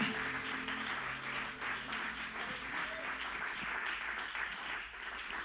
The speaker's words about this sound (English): Can you clap your hands to the Lord right now?